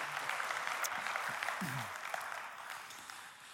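A crowd applauds with dense, steady clapping, faint background voices mixed in, and the applause gradually tapers off toward the end.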